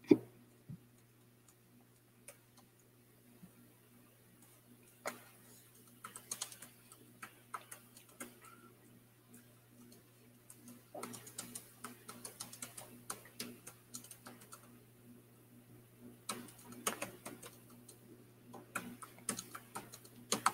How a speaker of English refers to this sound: Oh, I guess I could be saying what I'm typing here.